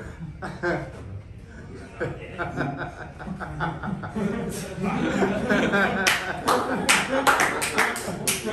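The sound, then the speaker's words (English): An audience laughs and chuckles at jokes, then breaks into applause that builds in the second half, many sharp hand claps overlapping into a loud, steady patter with voices murmuring underneath. “Wait, is this an applause break?”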